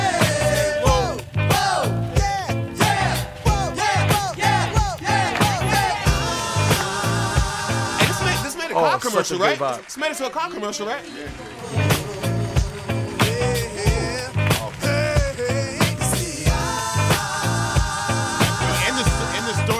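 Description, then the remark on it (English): A hip hop song plays loudly for the whole stretch, with a steady punchy beat and layered instrumentation, briefly thinning out into a short break midway before the full groove returns. “I just had so many flashbacks of fighting with my brothers in the car to this song, like all these jams.”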